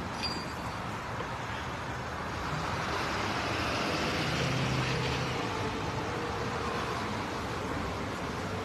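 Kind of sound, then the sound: vehicle, traffic noise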